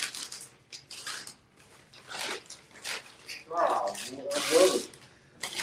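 Paper crackles and rustles in irregular bursts as sheets that had been stuffed in randomly are pulled out and crumpled, with a few quiet vocal sounds mixed in.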